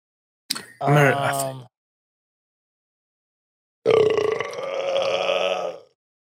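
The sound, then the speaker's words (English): Two loud burps separated by a few seconds of silence: a short guttural one near the start, then a longer, drawn-out rumbling belch that trails off. “Yeah, I've been burping a lot tonight.”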